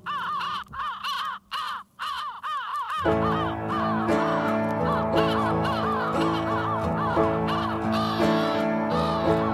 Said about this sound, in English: The vinyl has the crows at the end.